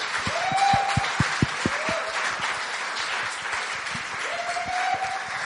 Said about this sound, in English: Right, let's say well done to them. Yep. Let's give them a clap.